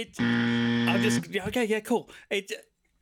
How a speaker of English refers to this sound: The buzzer went off.